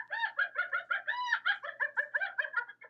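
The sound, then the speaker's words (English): A loud, eerie cackling in the jungle at night: a rapid run of bright, throaty bursts that stretches into one drawn-out note midway, then chatters on steadily. No voices. “Suddenly, a creepy cackling could be heard.”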